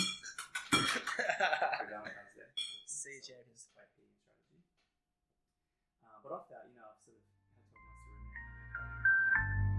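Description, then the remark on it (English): Glasses clink together in a sign-off toast with a bright, ringing chime at the start, followed by quiet murmuring voices and then a steady, tonal musical drone near the end. “You must clink it, right?”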